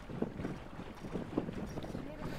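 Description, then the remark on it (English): A boat heading out into a harbour in Scotland toward a sailing racecourse in light wind, with a steady rumble of engine and wind buffeting the microphone, waves slapping against the hull, and faint voices in the background. “So while we wait on the wind to pick up, we're going to head out on a couple of boats to sail out into the harbour where the racecourse is.”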